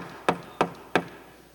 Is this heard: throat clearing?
no